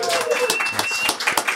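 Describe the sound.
At a celebration held in a house, a crowd breaks into a round of applause for the couple hosting it, a dense, steady patter of many hands clapping at once, with voices mixed in beneath the noise throughout.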